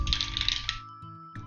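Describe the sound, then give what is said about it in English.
Dice clatter and rattle quickly down a dice tower built into the back of a game screen, in a dense burst of small hard knocks, fairly loud, then stop. Two brief low voiced sounds follow. “But this is an example of the convenience of it because, for those of you that can't see, the back of the screen actually has an integrated dice tower.”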